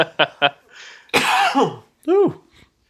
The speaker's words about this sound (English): I'm coughing up a storm here, guys. Dying over there.